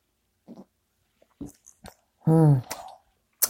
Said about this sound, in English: with my first cup of coffee, my first sip.